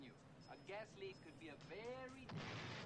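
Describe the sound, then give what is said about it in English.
Voices carry on over a movie soundtrack, then a muffled explosion, a staged fake gas leak explosion in the film, bursts in near the end and rumbles with a wide, noisy roar. “Ah, so they're making a fake gas leak explosion.”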